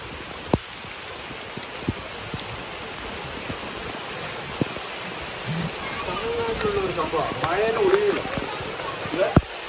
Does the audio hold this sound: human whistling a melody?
no